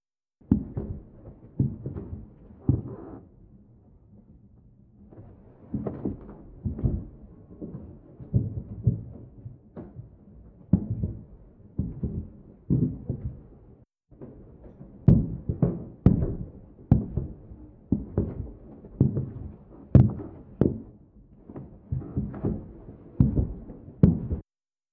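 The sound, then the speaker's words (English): Footsteps picked up on a recording from a microphone that had been put in place: a steady series of dull, low thuds at walking pace, quieter at first, briefly stopping partway through, then resuming a little louder. No one speaks. “So I have the recording of those footsteps.”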